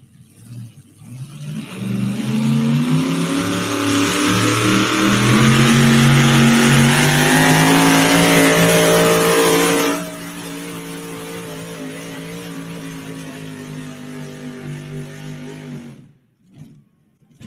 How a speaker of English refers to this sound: Perfect. Well, we'll let this truck pull.